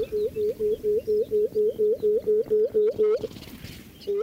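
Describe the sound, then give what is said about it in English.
A bird's loud, resonant hooting song as it circles its territory: a quick, evenly paced run of about thirteen low, mellow hoots, then a short pause before a single further hoot begins. “It's a really incredible thing to see this bird floating towards you, uttering this loud, resonant hooting sound.”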